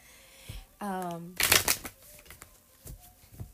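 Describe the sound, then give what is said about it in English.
A deck of cards, one of four decks laid out, is riffle-shuffled in one quick, crisp burst of fluttering snaps, preceded by a brief hum from a voice and followed by scattered light taps and clicks. “I'm just going to shuffle another deck. I have four decks out total. That's why all that shuffling is happening.”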